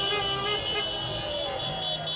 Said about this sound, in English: For people driving the Cinquecentos around piazzas at 3 a.m. honking.